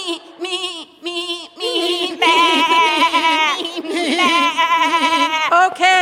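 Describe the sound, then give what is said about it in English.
A voice imitates a baby goat, letting out a series of wavering, nasal bleats. The calls start short and separate, then run together into longer quavering cries, loud throughout. “Oh, yeah, goats are hilarious. Especially the baby ones, they're like... No. It's more like...”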